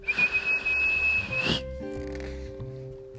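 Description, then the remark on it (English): A whistle is blown in one long, shrill, steady blast lasting about a second and a half, loud, then soft sustained musical tones carry on after it. “Mum had to blow her whistle.”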